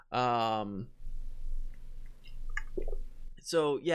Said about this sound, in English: Sorry, my throat was a little dry. I needed some water.